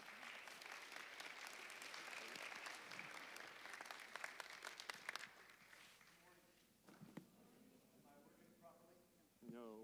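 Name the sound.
audience applause welcoming speaker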